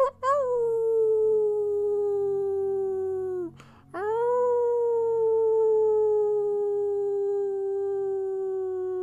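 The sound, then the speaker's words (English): Wolves howl in two long, sustained calls, each rising sharply then sliding slowly downward in pitch, separated by a brief break. The howls are loud, with no talking. “And you let out your howl as well as Azra letting out his howl as well.”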